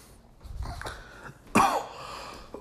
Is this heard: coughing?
yes